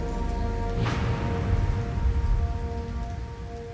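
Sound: heavy rain pouring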